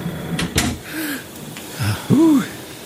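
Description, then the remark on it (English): A house door is shut with a single sharp knock near the start, followed by breathy gasps and a brief creaky, wheezing sound. “Let's go in. Shut the door,”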